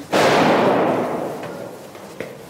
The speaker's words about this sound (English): This used to be a wedding hall. Now it's the front line position. Apart from the sound of gunfire, it's eerily quiet in this former ballroom.